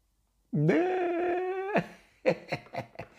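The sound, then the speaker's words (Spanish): A dog named Manny, living in Costa Mesa, lets out a long, drawn-out whining vocalization, then a quick series of short yips and whimpers, fairly loud with no talking. “Yo vivo en Costa Mesa con mi perro Manny.”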